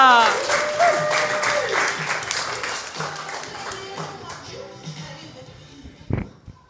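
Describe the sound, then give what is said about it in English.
Audience applause as the next act is brought on, rising quickly into dense, rapid clapping, then thinning out and fading over several seconds, with a brief louder burst near the end. “We've been friends for many years, so let's bring that applause up”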